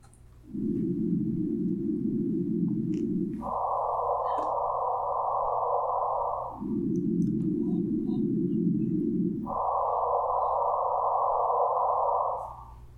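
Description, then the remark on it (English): A gravitational-wave thump registered by the detectors, rendered as sound and played four times in turn: a low, buzzy hum at its true frequency, then the same sound artificially raised to a noticeably higher pitch, each lasting about three seconds, with no voices. “we're going to play that thump for you a couple times, and then we're going to artificially increase the frequency”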